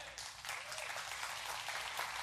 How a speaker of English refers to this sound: Thank you. Thank you for those three hand claps. That's exciting.